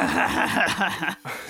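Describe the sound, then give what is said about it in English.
A person imitates a dragonborn character's giggle that sounds like a growl, a rough, throaty chuckle rumbling for about a second and a half, broken by a brief pause before one last gravelly burst. “I'm giggling, but it really sounds like a growl from the dragonborn.”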